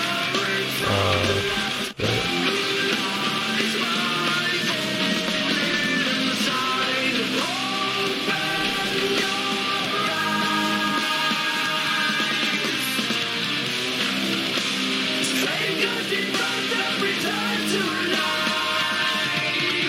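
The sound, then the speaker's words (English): A loud, dense metal chorus with heavily distorted guitars and powerful sung vocals, sustained and driving throughout, with a brief break near the start before the wall of sound continues. “I'm gonna skip ahead to the chorus because we have like a whole other verse here.”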